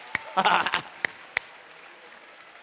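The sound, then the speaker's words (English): Scattered, sharp hand claps ring out as people clap to the Lord in praise, a few isolated ones and a short cluster mixed with raised voices early on, then the crowd settles into a low murmur. “Come on, clap to the Lord right now.”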